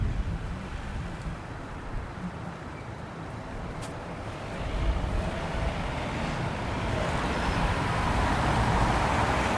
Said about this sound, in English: Did you notice that your own silence actually became filled with cars, people, and a general low fog of rumbling movement? A noise that was always there, but how often do you really think about noise?